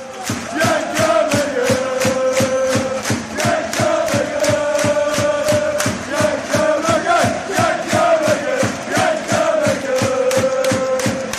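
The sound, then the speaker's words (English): A large football crowd chants a player's song in unison, a steady rhythmic melody with regular clapping beats, loud and sustained throughout without pause. “Do you ever find yourself humming that chant that we had for you?”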